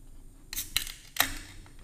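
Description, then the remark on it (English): A crowler can of May, a 5.5% ABV fruited sour beer from True Anomaly Brewing Company in Houston, Texas, is cracked open: a short rasp and sharp metallic click, then a louder snap followed by a brief fizzy hiss, with no talking. “Let's crack it open.”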